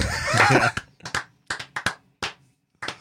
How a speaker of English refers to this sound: I'd blow you up if I had a blowing up sound effect. Like a round of applause, sound effect. A golf clap.